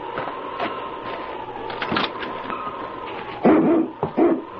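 A husky dog named King gives a few loud barks near the end, after a stretch of steady whining background noise with faint scattered thumps.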